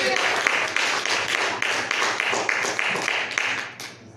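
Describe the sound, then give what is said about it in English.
An audience claps hands together in response to a preacher's call to clap if they are seeking Jesus: a dense, steady burst of applause at full volume that carries through and then starts thinning out near the end, with a murmur of voices underneath. “Come on and clap your hands if you're seeking Jesus today.”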